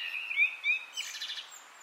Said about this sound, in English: who lives in Dublin, sent us birdsong from his garden.